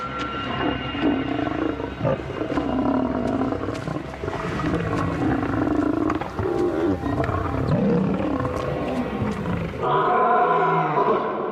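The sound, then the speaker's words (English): A lion, Mohawk, roars loudly, deep, rumbling bellows repeating in a steady series of powerful, grunting calls that fill the air for several seconds. “Lions' roars can can go up to 5 miles.”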